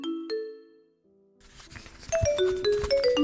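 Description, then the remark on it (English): A phone ringtone jingle: two chiming electronic notes, a brief pause, then a quick bright run of stepping melodic tones over a faint hiss. No one speaks. “I put my phone to my ear just in time as it nearly finished its jingle.”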